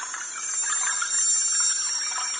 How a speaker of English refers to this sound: So let's bring in the wind chimes.